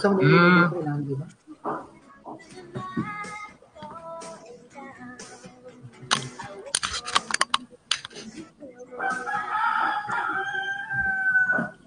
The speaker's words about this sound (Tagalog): Na-miss ko yung tilawak ng manok sa probinsya.